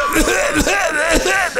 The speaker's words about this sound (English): I can't even cough that long because it hurts me. I can't even do it. That's because she's doing it from her diaphragm.